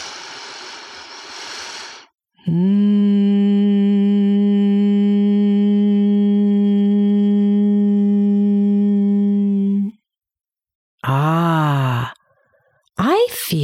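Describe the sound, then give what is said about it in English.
A noisy breath in, then a single long, steady, low-pitched hum held for about seven seconds as the breath is hummed out until the air is gone, followed by short wavering vocal sounds. “Breathe in again, a long breath, and now hum it out until all the air is gone, like this.”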